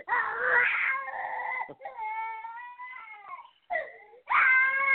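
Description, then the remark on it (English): A small child wails in a tantrum, with long, high, strained cries that break into sobbing gasps and brief pauses before erupting again, loud and insistent throughout. “Okay, y'all hold on while I take care of this tantrum.”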